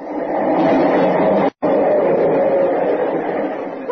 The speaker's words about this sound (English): What's that? The subway. It's right under it.